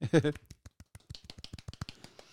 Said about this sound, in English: Golf clap.